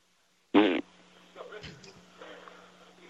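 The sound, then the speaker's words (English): A short, loud, buzzing raspberry blown with the lips imitates a fart, lasting about a quarter second, followed by quieter murmuring voices. “Okay, can you just make the noise with your mouth?”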